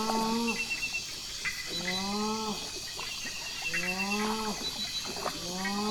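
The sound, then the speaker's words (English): A rufescent tiger heron at a rainforest lagoon gives a series of deep, booming, moo-like calls, each a drawn-out harmonic groan repeated roughly every one and a half seconds, loud against a humming frog and insect chorus. “Would you believe a rufescent tiger heron?”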